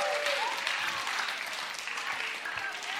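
A crowd applauds steadily, a dense wash of many hands clapping at a constant moderate level for the whole stretch, with no voices standing out.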